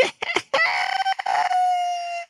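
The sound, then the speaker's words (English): Someone imitates a guinea pig squeak: a few quick, choppy squeals that stretch into one long, steady, high-pitched whine. Loud, with nothing else around it. “Not the first time he imitated one of the guinea pig sounds.”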